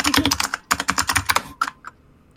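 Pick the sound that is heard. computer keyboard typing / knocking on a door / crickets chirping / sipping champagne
computer keyboard typing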